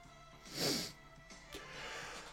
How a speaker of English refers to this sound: Oh my God, I can't stop yawning. I'm so sorry.